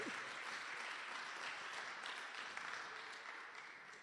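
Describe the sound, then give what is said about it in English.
A crowd claps steadily in a dense, continuous wash of many hands, sustained at an even level before tapering off slightly toward the end. “Clap your hands for me.”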